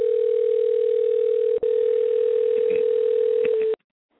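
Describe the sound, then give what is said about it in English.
A loud, steady telephone dial tone hums continuously for nearly four seconds as a call is dialed out, with one tiny break partway through, then cuts off abruptly into silence. “So we're going to dial out now.”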